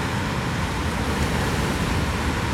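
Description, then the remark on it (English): A steady, full wash of ocean surf roars continuously and fairly loudly, a broad hiss and rumble with no distinct breaks between waves and no voices. “But yeah, you can hear the ocean.”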